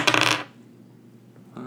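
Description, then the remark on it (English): A quick, bright clatter of many dice tumbling across a hard tabletop during a tabletop role-playing game, lasting about half a second and loud, then near silence with a faint hum before a short noise at the end. “It's a lot of dice”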